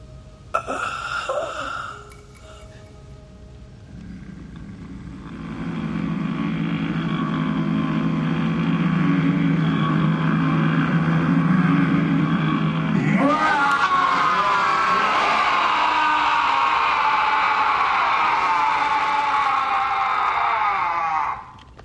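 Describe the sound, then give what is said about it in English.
A Klingon warrior yell: a long, loud, raw roar held for many seconds, jumping to a higher, harsher pitch partway through before cutting off, with no talking. “There's the Klingon yell.”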